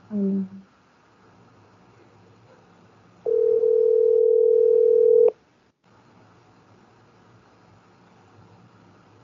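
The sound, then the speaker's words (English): A phone's ringback tone sounds while calling: one loud, steady electronic buzz lasting about two seconds, then a long pause over faint background hiss before the next ring just begins. “Oh, I thought he answered.”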